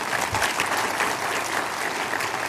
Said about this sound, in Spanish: ¿Te puedo dar un aplauso a la nación si estás entendiendo esto?